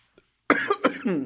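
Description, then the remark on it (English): A loud fit of coughing from a person who has COVID: three or four harsh bursts in quick succession after a brief silence, ending in a rougher, voiced hack. “Girl, not me coughing.”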